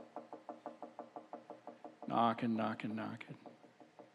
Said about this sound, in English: Knocking.